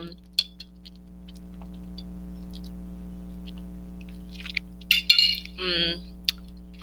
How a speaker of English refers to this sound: I'm drinking my lemonade.